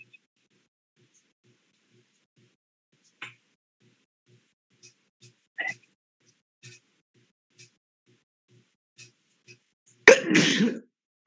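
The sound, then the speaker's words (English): A single loud sneeze bursts out near the end after a stretch of near silence with a few faint clicks and soft sounds. “Bless you.”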